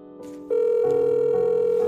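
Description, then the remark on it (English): A phone line rings on an outgoing call: a steady, fairly loud electronic tone swells in after a brief quieter start and holds without pause, with no voices. “and to my surprise, he was actually expecting my phone call.”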